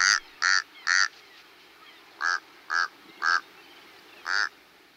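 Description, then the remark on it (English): A Tamaulipas crow gives seven short, nasal, croaking calls: a quick run of three, then three more evenly spaced, then a single final call, clear against a quiet background. “And at the southern tip of the country, the Brownsville, Texas dump was, for years, the only place in the U.S. you could find a Tamaulipas crow.”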